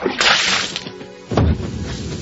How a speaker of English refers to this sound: So you dumped a bucket of water on the television against your will.